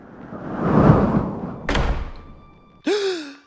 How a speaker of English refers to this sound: Who closed that door? This thing is made out of solid steel.